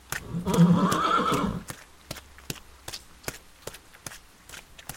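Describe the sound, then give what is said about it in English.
A horse gives a loud, drawn-out whinny near the start, followed by a series of sharp, irregular hoof clops on hard ground as it moves about, as General Ulysses rides out with his staff onto a muddy field in response to a Confederate attack. “Arriving at the field, Ulysses rides out with his staff.”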